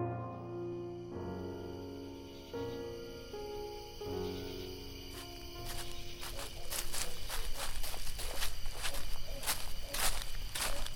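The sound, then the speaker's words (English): Steady footsteps crunch along at a regular walking pace through a cemetery in darkness, growing louder, following a stretch of soft, sustained, organ-like tones that fade as the steps begin. “Why must we snake our way through the cemetery without a torch?”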